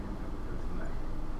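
telephone keypad dialing tones

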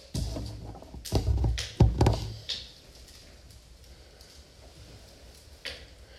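knocking on a door

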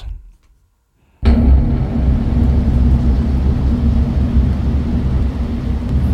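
car engine

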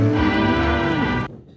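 cow mooing

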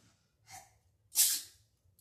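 sneeze

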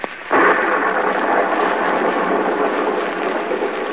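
thunderstorm with rain

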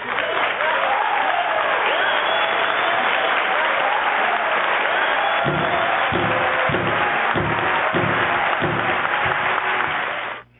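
crowd clapping and cheering

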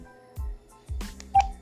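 telephone keypad dialing tones

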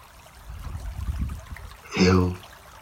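stream water flowing

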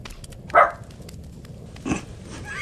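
dog barking

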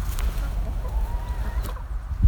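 chicken clucking

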